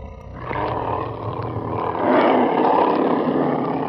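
A loud, rumbling creature roar erupts outside and fills the whole stretch without pause, swelling even louder about halfway through. Its growl is deep and rough, and no one speaks.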